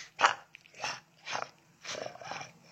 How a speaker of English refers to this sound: Growling. You ever eaten a lemon? It's not easy. I'm disgusted by the sounds that are coming out. Yeah, of him.